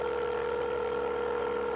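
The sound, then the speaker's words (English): A telephone keypad dialing tone sounds as one steady, unbroken electronic beep for under two seconds, fairly loud, with no voices, as someone on an airplane dials a phone to call Arnie. “I gotta get Arnie on the phone. Maybe he can help.”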